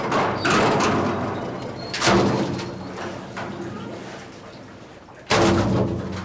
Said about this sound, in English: The fishing vessel Sea Hound docks at the Chatham Fish Pier on Cape Cod, Massachusetts, to unload her catch as a huge steel bucket swings down onto her deck.